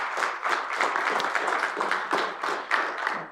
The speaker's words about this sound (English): hey, can we just kind of give a quick applause to our tech team?